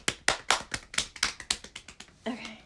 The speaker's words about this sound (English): But we are on episode 20, so we gotta clap it up.